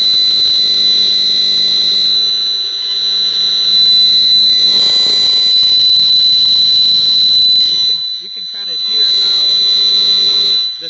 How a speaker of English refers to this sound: High screeching sound, that's the cell phone towers. And then there's some, it just sounds horrible.